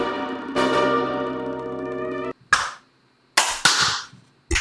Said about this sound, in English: I heard four possible. Distinct claps, including my own. I mean, I heard your three claps.